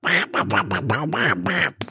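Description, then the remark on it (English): A voice does a cartoon duck impression, a loud stream of raspy, garbled quacking syllables in quick rhythmic bursts, like squawky duck-talk. “which was Duck, Donald Duck”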